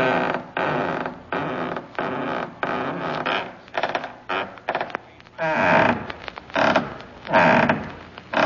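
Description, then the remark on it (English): A long series of loud, drawn-out creaks, like a heavy wooden door or beam groaning as it sways in the wind, repeating in uneven surges with short pauses between, prominent with no talking. “Damn wind.”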